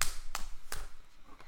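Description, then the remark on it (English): Two sharp hand claps, made to imitate the sound of a penguin, land a little under half a second apart, followed by a much fainter third tap. No one speaks. “What about a penguin? Clap, clap.”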